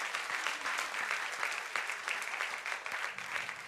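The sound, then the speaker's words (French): Steady audience applause with dense, rapid clapping that holds at an even level for several seconds, bright and crackly with no voices rising above it. “Donne une bonne main d'acclamation.”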